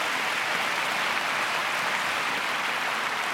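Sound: audience hand clapping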